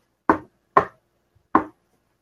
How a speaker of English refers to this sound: I go to look at the airlock door, and everything seems to be fine. I hear a knock again.